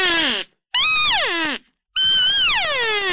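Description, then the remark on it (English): A call imitating a cow in heat (estrus vocalization): three loud, raspy, high-pitched meow-growl calls, each starting high and sliding downward in pitch, separated by short silences, with the last one drawn out longest. “Meow, real, real loud, high-pitched, raspy meow, growl when you do it.”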